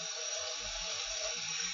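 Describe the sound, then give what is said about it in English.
A steady stream of warm water, just under a cup, pours continuously into the middle of cake mix powder, a soft hissing splash with no pauses and no voices. “I am going to add a cup of warm water.”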